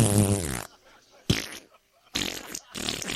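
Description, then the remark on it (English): People blow loud, buzzy raspberries with their mouths to imitate farts: one long vibrating rip first, then several shorter sputtering bursts, separated by brief pauses. “He said, make fart noises. Just let one rip to your neighbor.”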